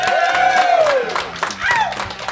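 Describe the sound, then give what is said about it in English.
Steady crowd noise from a live audience of thousands at Porkfest, with scattered claps, a long gliding whoop or whistle that falls in pitch, and a shorter rising one near the end. “We are performing in front of a crowd of thousands.”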